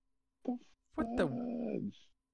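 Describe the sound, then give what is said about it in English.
An animated furry dog gives a short whimper, then a longer, drawn-out growling whine that slides down in pitch, fairly loud with nothing else behind it, as it eats another furry dog. “This animation of a furry dog eating a whole other furry dog.”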